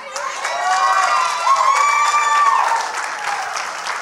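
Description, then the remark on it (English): An audience claps and cheers for about four seconds after a preacher recites a Bible passage, a dense, steady wash of applause topped by rising and falling whoops and shouts from many voices. “You shouldn't clap for that.”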